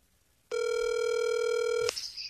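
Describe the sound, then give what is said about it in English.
A telephone line rings once as a call is placed, a single steady electronic tone lasting over a second, loud, then cuts off with a click and faint line noise. No one speaks. “I have to hold the phone here to talk to him.”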